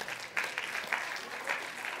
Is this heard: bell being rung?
no